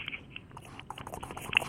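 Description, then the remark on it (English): Bong water bubbling in a steady, crackly gurgle, a busy stream of small pops and burbles with a slightly sharper burst near the end. No one speaks. “You'll hear the bubbles.”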